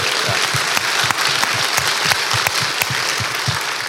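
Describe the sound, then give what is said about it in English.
Steady, dense applause from an audience for a man who battled cancer twice and defeated it, with many overlapping claps forming a bright, continuous crackle at an even loudness throughout. “So if we can we give him a round of applause for that?”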